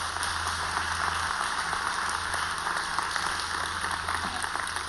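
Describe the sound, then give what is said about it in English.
A church audience claps steadily for several seconds, a dense, even patter of many hands with no pauses and no voices, over a low background hum. “You can clap for that.”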